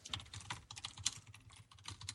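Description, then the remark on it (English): Rapid, clattering keystrokes on a loud computer keyboard, a steady stream of clicks with a few heavier space-bar taps standing out, with no talking. “You have a loud keyboard.”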